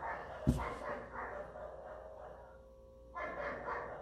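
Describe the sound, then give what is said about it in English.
Dogs bark outdoors on a rainy, cloudy day in the south of Brazil, a sharp bark near the start followed by a sustained stretch of barking and another burst near the end, with no one talking. “Got the dogs barking outside.”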